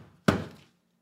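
A single heavy thump of someone in an apartment banging on the ceiling at upstairs neighbors who run around, like a fist or broom striking the ceiling, sharp at the start and ringing out briefly before silence. No one speaks.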